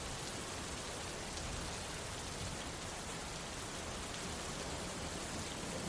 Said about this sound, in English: A thunderstorm. Those of us who live in the desert, we cherish them. Think of the smells after the rain in the desert.